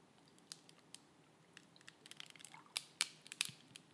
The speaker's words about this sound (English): Listen to this. Let's put that up to the mic. Listen to this coffee pour.